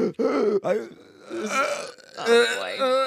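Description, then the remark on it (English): A voice imitates someone choking and gasping for air: strained, croaking groans and rasping breaths in broken bursts, fairly loud, with no words. “…'s just gasping for air and dying. It's just like you're trying to breathe, but nothing's coming.”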